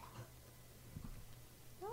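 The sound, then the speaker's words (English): An old dog named Bruno heaves once with a low, guttural, breathy burst like an old man, fairly faint and brief, followed by a short whiny rising sound near the end. “He's an old dog. Just heaved, but it really sounded like it, like an old man.”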